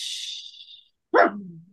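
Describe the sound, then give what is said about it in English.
A single loud bark from the dog Dash, battling with a dog across the street, bursts out after a soft hissy stretch. Its tone drops into a brief low growl-like tail before fading. No one speaks. “Yeah, Dash is having a battle with the dog across the street or something.”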